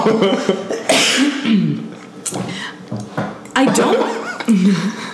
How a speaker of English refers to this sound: hold on, I need to cough. Okay.